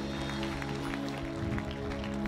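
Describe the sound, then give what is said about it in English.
A church audience in a room applauds for Jesus with steady, dense clapping that fills the space for a couple of seconds, over a low sustained musical tone. “Let's give Jesus a round of applause in this room.”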